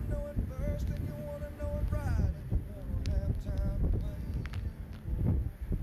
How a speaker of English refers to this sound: Not sure what the gusts are, but definitely this is a tropical storm. I think we're seeing a little higher gusts.